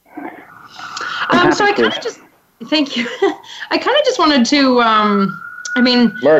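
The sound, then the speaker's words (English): An ambulance siren wails outside, its rising and falling tone drifting under a man's steady talking, partly masked by the voice. “Yeah, there's an ambulance going outside.”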